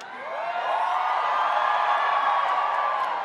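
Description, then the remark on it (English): A large crowd at a convention cheers and whoops as guest Hayden, back in Star Wars after nearly 20 years in the Obi-Wan Kenobi series, comes on stage. The sustained roar swells in the first half second and holds loud and steady, with scattered high yells rising above the din. “Yeah, the crowd went viral, went freaking insane.”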